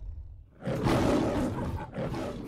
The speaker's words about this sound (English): Leo the lion mauls Crisscross. He eats every part of him.